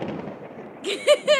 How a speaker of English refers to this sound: Thunderclap for that.